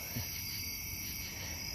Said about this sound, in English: I don't know if you're able to hear this, but I'm outside with the crickets. And the locust right now, the cicadas out here.